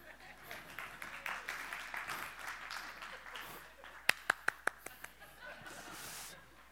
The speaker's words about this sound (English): Like, I get a golf clap, and I say, come on,